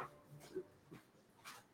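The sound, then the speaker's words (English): A male dog named Lady whimpers softly in a few short, high-pitched whines spread over a couple of seconds, faint, with no one speaking. “What's the matter, lady? By the way, my dog, Lady, is a boy.”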